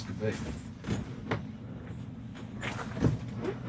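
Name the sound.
door being opened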